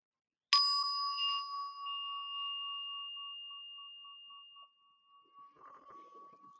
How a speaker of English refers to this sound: Okay, so I'm going to lead us through the Seven Homecomings meditation, as I've learned it from Lama Rod Owens. And I'll start us off with a bell.